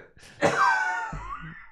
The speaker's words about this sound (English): Got that smoker's cough.